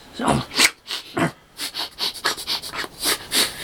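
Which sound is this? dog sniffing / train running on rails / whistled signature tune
dog sniffing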